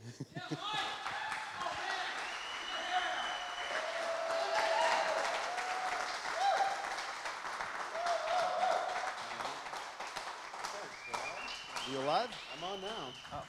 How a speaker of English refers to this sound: You got a way better applause than I had, though.